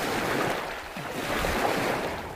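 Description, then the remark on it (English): Steady water of Yellowstone Lake washing and lapping against the shore while someone skips rocks, with a constant breezy rush of wind over it; no voices, and no distinct splashes from the skipped stones stand out. “Then there was Yellowstone Lake, where I had to stop and skip some rocks.”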